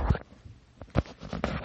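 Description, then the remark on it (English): A deck of cards being shuffled, heard as a few soft, brisk bursts of papery rustling and light tapping in an irregular rhythm, with short quiet gaps between them and no voices. “Shuffle them.”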